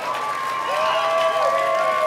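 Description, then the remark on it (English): An audience in Colorado breaks into a steady round of applause for the people whose video brought the event there, dense clapping filling the whole stretch with a few cheers and whistles rising above it. “Give a round of applause for making it come here for you guys.”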